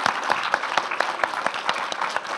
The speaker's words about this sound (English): Well done, round of applause for our last person.